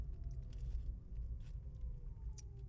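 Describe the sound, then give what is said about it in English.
Quiet chewing of food with a few soft, irregular crunchy bursts over a steady low rumble; no one talks. “Excuse me while I'm eating.”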